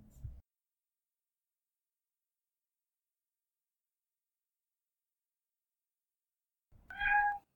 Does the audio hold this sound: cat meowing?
yes